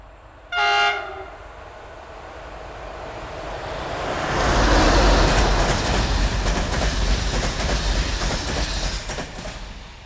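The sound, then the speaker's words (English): A massive steam locomotive sounds a short, sharp horn blast, then a heavy, rushing rumble swells up and keeps roaring steadily with rattling clatter as the train runs on toward the sugarcane plantation town of Triangle. “It was spectacular and by far the best way to travel by train, with the warm, low-felt wind in our hair and the thunder and power of a massive locomotive behind us.”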